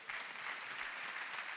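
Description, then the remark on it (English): An audience bursts into steady applause, a dense crackle of many hands clapping at once, sustained and even in loudness for the whole moment with no voices standing out. “And y'all can clap for that.”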